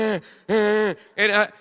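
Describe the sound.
A voice mimics labored, painful breathing, imitating a man with hurt ribs after hitting a truck, breathing like Quasimodo: three loud, strained, voiced gasps, each followed by a breathy exhale, in a halting rhythm with no words.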